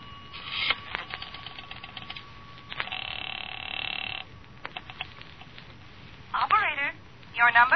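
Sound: telephone being dialed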